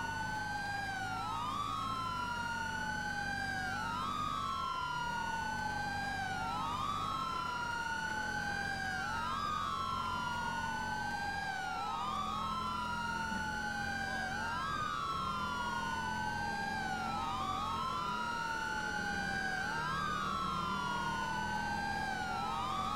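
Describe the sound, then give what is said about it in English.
A police car siren in a video game wails continuously, sweeping up and down in a steady repeating cycle, loud, with a low engine rumble beneath and no voices. “Why is my controller not letting me change the siren tone?”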